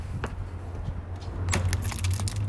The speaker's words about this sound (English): Opening up the door.